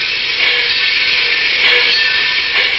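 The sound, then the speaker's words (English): A steady, loud rushing rumble of a Great Valley Railroad train rolling along the rails at Northbridge, Minnesota, heard from the observation car, continuous and even throughout with a hissy high edge and no voices. “and I were sitting in the observation car of a Great Valley train at Northbridge, Minnesota.”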